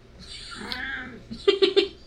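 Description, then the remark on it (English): A cat on a table meows: one drawn-out, wavering meow, then three quick, short, louder meows in a rapid row. “My cat jumped on the table because, you know what, that's just the day we're having, so.”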